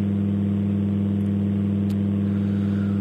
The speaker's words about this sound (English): Sorry, we're going to have to talk over this awful hum.